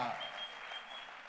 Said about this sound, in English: So God is a very great God. Clap your hands for God.